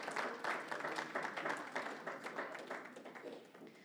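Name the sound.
audience clapping hands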